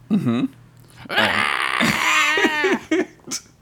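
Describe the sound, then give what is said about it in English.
The character Chekhov screams in anguish, a loud, drawn-out cry with a wavering pitch, preceded by a brief lower groan and ending in a few short strained gasps. “And Chekhov screams in a way that only Chekhov can.”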